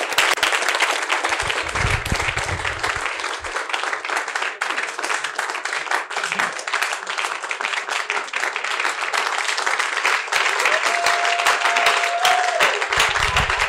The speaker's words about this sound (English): Rise to your feet. I didn't ask you to clap, but if you are clapping for Jesus, you can do a better one for him.